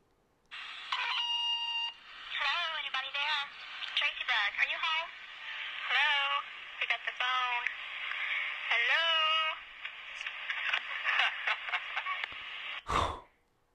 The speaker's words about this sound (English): Yeah. I heard a little bit of a noise. Somebody picked that damn thing up. Yeah. So someone picked up the phone.